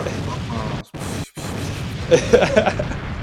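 Loud cannon blasts thunder in a dense, rumbling barrage, broken by two brief silent gaps, then a flurry of sharp crackling bursts near the end, all heavy.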